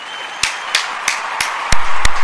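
Six sharp hand claps in a slow, steady rhythm, with the last two noticeably louder and fuller than the first four. No one speaks.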